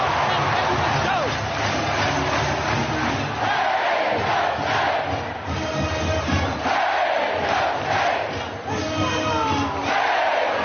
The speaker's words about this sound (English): Here's how it sounded. Oh, come on. I cue these things up. Hitch on. Listen to that crowd.